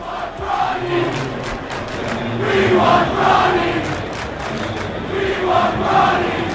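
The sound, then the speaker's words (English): A large crowd of Ohio State Buckeyes fans at a college football game against Notre Dame chants "We want Bronny" in unison, a rhythmic repeated cheer rising and falling over a steady roar of voices, loud throughout with no single speaker standing out. “LeBron James and Bronny were there, and they started cheering, "We want Bronny." Wow. That's what you just heard.”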